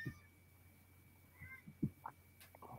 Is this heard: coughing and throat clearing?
no